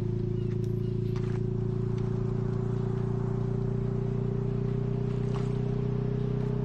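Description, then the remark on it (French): A video game point capture sound effect from Overwatch, heard when a point is captured: a steady, continuous low humming drone with layered tones, holding at an even loudness throughout with no speech. “C'est quand tu captures un point dans Overwatch.”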